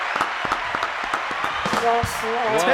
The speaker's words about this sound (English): we had an issue the other day where the applause sound effect was stuck on